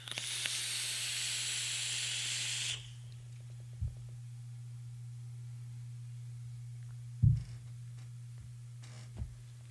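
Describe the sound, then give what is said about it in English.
An e-cigarette filled with a peanut butter white chocolate chip cookie e-liquid draws with a loud, steady hissing sizzle for about three seconds, then falls away to a low background hum broken by a few soft thumps. No one speaks. “I don't want to just vape this liquid real quick.”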